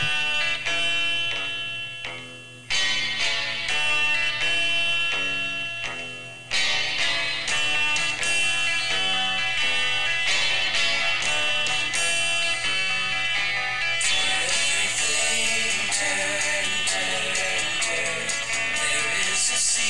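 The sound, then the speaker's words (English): A 1960s folk-rock song opens with bright, ringing guitar chords and a steady beat, briefly dropping out twice early on before the full band swells louder and fuller. “Let's listen to this short segment from the beginning of that song that you might recognize.”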